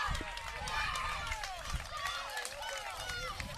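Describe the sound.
A baseball crowd at Robeson Park cheers wildly at night after a leadoff triple hit to right field, a dense, steady roar of many overlapping voices with excited shouts and whoops rising through it, sustained at full volume for the whole stretch.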